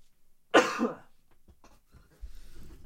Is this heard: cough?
yes